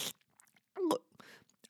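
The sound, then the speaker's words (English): A mouth imitates someone sipping coffee: a short wet slurp with a brief whistling, rising tone at its peak, framed by soft breathy hisses and small clicks, fairly quiet overall. “Which means that he sat down next to me and was like sipping his coffee. Hold on, let me give you a sound effect to go with this.”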